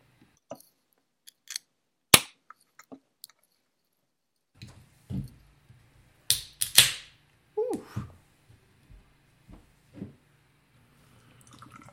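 Several men crack open beer cans: a few sharp metallic snaps followed by short fizzy hisses, scattered among quieter handling clicks and taps, with no talking.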